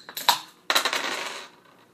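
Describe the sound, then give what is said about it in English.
Dice clatter onto a hard table, first a short rattle and then a longer tumbling roll that settles and fades. Fairly crisp, with no voices. “Plus 1 dice versus energy.”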